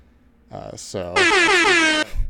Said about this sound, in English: They're happening every time you talk. I hit the air horn.